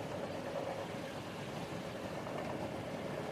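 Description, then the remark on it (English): A steady, rumbling hum from the vibrations of a train at a steady speed on a long journey runs throughout, a dense low drone with a mid-pitched tonal band, holding an even loudness without breaks or voices. “The vibrations of the train are strong, yet soothing. They even out into a relaxing hum as the train has reached a safe and steady speed for a long journey.”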